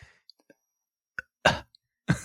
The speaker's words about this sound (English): You just burped. You had a little burp in the background.